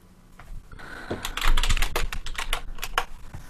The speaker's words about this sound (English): Oh, the insane typing. I love it. Type. Just Googling it. Nah, joking.